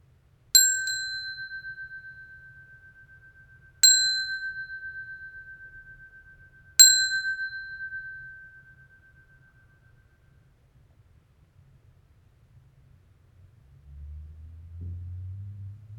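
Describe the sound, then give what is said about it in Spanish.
A meditation bell rings three times at even intervals during a guided meditation, each clear tone sustaining and slowly fading into quiet, followed by a soft low rumble near the end. “Usaremos el sonido de esta campana para anclarnos al momento presente.”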